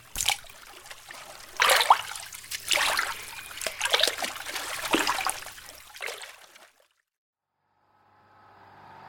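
A paddle pounds and churns the water in a string of loud, irregular splashes for several seconds, then stops abruptly, leaving near silence and a faint hum at the end.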